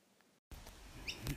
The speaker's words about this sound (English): This isn't a good place. There's some birds up. Oh, it's alright. If they crap on me, it's lucky.